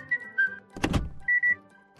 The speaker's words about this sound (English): a man whose whistle can tune a radio, remove limescale, and open a car's central locking.